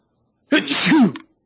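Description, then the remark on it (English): A single loud sneeze bursts out suddenly with a sharp breathy onset and a voiced tail, lasting under a second before it goes quiet again. “Bless you. Sorry, I tried to turn away, but I couldn't.”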